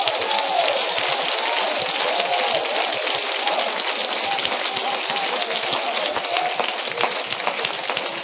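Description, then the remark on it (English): An audience at a worship service claps their hands steadily, a dense, even wash of many overlapping claps with no clear beat, loud throughout, with faint voices just beneath it. “Clap your hands.”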